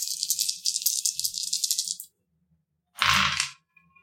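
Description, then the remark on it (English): Four six-sided dice rattle rapidly in a hand or cup for about two seconds, then after a brief pause they clatter loudly onto a surface in one short burst, landing as three sixes and a three. No one speaks. “Oh my god, I actually rolled 3 sixes and a 3.”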